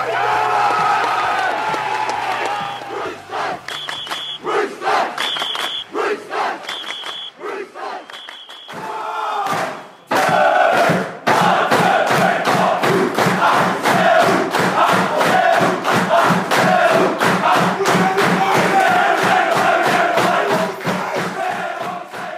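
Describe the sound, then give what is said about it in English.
A huge stadium crowd of about 40,000 Roosters fans roars and cheers loudly, with a few short electronic beeps early on. The noise then turns into steady rhythmic chanting and clapping. “Well, Roosters fans, there was 40,000 fans out there yesterday screaming and cheering our red, white and Bluesters.”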